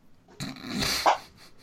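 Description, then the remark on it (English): A cat, with its mouth up against the bottom of a closed door, gives a single muffled, drawn-out meow, strained and slightly growly, rising briefly then fading; no one speaks. “She just like had her mouth like up against the bottom of the door and had the door closed.”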